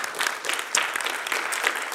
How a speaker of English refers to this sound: Amen. Come on, give him a big hand clap if you can receive that today.